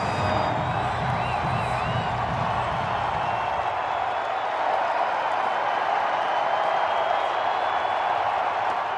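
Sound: hockey arena crowd cheering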